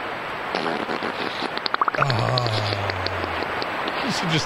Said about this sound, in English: What you're about to hear is an adorable little beaver in a wooded area settling into the water. Then it lets one rip, bubbles and all.